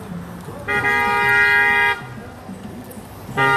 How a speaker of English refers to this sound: As usual, when I get on here, something has to happen in the background. Who is this person honking? No clue.